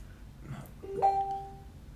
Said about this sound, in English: Somehow my phone got linked to like both computers. So like anytime, like I'll have my phone silenced, but then my computer still beeps at me.